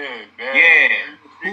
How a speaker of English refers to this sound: Yo, am I echoing